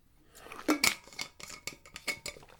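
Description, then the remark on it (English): A little water being poured and drunk: a string of short, sharp clinks and light clattering taps of glass, quiet overall with a couple of louder knocks, and no talking. “Excuse me, a little water.”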